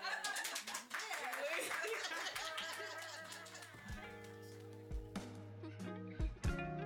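Applause sound effect of hand clapping, a dense burst of many hands at first, thinning into scattered sharp claps over a steady tonal hum toward the end.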